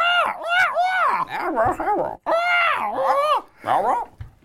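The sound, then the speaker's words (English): A person calls to a crow, imitating crow calls with a run of harsh, rising-and-falling caws in quick succession, loud and nasal, with brief gaps between bursts and no ordinary speech. “This is why people listen to podcasts, for up close and personal crow sounds.”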